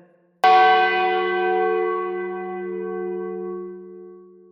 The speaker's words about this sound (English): a distant ringing. The bell tower! Jake cried from outside. He's in the bell tower!